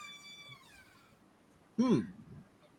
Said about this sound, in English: No, that's not a meow. That's a door. It's a door.